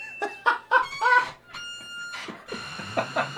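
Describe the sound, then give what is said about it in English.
A run of high, rubbery squeaks in a music track, like balloons being rubbed: several quick squawking bursts, then a longer held squeal, then more squeaks, fairly loud with no talking. “It sounds like a bunch of people in like a balloon factory just rubbing their forearms on them.”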